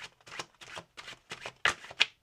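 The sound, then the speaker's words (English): Tarot cards are shuffled in a quick run of crisp, papery riffling bursts, about eight short rustling flutters, the last two sharper and louder. No one speaks. “I want to get a card for this seer energy really quick.”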